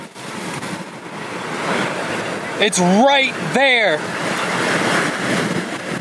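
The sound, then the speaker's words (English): A steady, heavy roar of tornado winds buffets the car without letup as the tornado passes over the road right in front of it, with the car in the rear flank downdraft (RFD) backside winds. It is a broad rushing noise that swells slightly in places, and a person speaks briefly over it midway through. “All right, it's passing over the road right in front of us. We're in the RFD, the rear front point downdraft. The backside winds are significant.”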